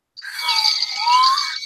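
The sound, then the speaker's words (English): A loud, harsh electronic buzz sounds continuously for about a second and a half, steady with slight wavering, as quiz game show buzzers are tested before a buzzer round, with no talking over it. “All right, let's just test out your buzzer again.”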